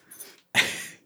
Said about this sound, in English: It's fine. It's fine. It'll entertain me the rest of the episode. If people listening to this podcast can appreciate some dog sounds, they're listening to the wrong podcast.